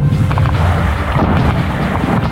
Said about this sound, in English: More incoming gunfire. Some Argentine batteries around Stanley. Got him.